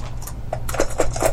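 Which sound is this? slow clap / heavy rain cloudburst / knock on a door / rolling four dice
rolling four dice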